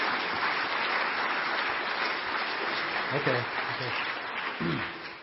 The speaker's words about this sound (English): Could you guys give him a real vigorous round of applause just to get him encouraged and give him energy to get up and get going?